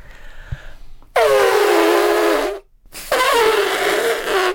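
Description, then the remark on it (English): A person imitates an elephant trumpeting with two loud, brassy blasts, each a sustained harsh blare sliding in pitch, separated by a short pause after a quiet opening. “I can do a good elephant.”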